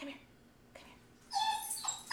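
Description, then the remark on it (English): A dog whimpers and whines in agitation after a doorbell rings, loud, with a couple of high, drawn-out whines following a quiet stretch and a brief faint yelp. “The doorbell rang and Jordy's dog is having a conniption.”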